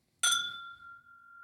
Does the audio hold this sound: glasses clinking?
yes